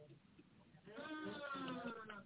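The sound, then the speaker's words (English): After a quiet, muffled start, a sheep lets out a loud, wavering bleat that carries on for over a second, prominent, with a bleating cry fading at the end. “So Samuel said, well, why am I hearing the bleeding of sheep?”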